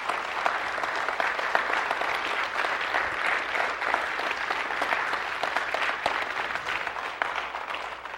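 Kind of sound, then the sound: crowd, audience applause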